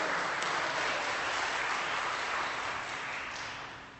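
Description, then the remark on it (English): An audience applauding in church: dense, steady crowd clapping that fills the room at a fairly strong level, holding for several seconds before tapering off slightly at the end. “Yeah, you can applaud. We can applaud in church.”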